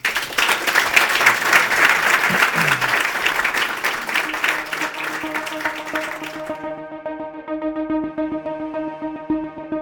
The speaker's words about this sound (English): maybe a round of applause for Matt, Peter, and George